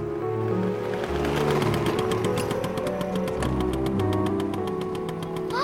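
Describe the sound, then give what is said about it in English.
A small motor scooter engine buzzes with a rapid, rattling putter, holding steady and fairly loud throughout as it approaches, with no one speaking. “That sounds like a motor scooter.”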